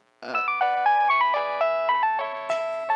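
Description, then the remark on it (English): A classic Nokia mobile phone ringtone plays a quick, bright synthesized melody of short electronic notes in a steady rhythm, loud with no voices. “And this was at the start of phones, like cell phones. So the tiny little Nokia ones, you know, like the”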